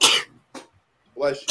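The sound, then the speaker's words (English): A loud sneeze bursts out at the start, followed by a brief sharp breath and a short vocal sound, ending with another abrupt noisy burst. “Bless you.”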